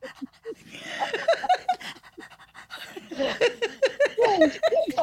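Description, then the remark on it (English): A dog pants rapidly and steadily, quick rhythmic breaths with a brief pause in the middle before the panting picks up again. “Yes, good dog.”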